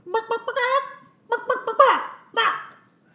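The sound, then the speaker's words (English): A hen clucks in two bursts, each a few quick, clipped clucks leading into a longer, raspy squawk, with a short pause between the bursts. “I can't really be responsible for this hen.”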